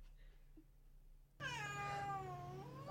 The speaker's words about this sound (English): Oh, that was the cutest little thing. His meow turned into a yawn.